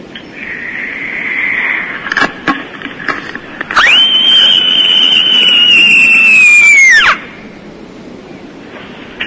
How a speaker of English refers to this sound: Here is my special... End of a hard day in year six, scream.